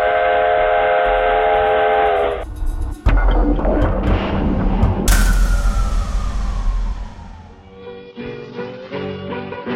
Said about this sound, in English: So all aboard, the trains in the Green Valley are about to blow the steam.